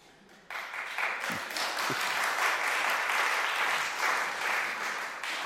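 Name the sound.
audience applauding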